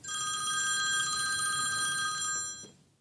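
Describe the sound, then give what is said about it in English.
A phone rings with an incoming call, a steady, bright electronic trill for a couple of seconds, then stops abruptly. It sounds clear, with no voices over it. “Later that day, my phone rang.”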